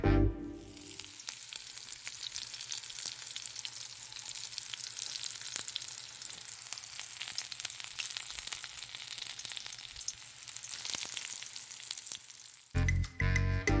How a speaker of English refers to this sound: Okay, so that was like a sizzling noise, and now I think I'm gonna change my guess to like butter.